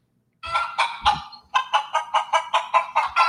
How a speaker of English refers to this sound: You think chickens would call him? Well, he's used to living, you know, because he's Latino, so he's used to, you know, hearing those sounds, you know, growing up on, you know.